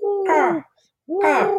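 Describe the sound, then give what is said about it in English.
A person imitates a hooting bird call with their voice: two close, fairly loud hoots separated by a brief pause, each a smooth, slightly sliding tone. “Tenderly get our attention by also observing social distance rules, just by maybe doing a faint bird call when you see us in the street like this.”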